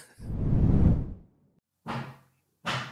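Construction banging as a contractor friend builds a temporary shoring support wall inside a house: a long, heavy, low rumbling thud, then two shorter, sharper knocks spaced about a second apart, with no talking.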